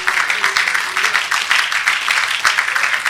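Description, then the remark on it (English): A crowd claps steadily together, a dense wash of many hands applauding, filling the whole moment with no voices standing out above it. “Come on, let's clap our hands right now.”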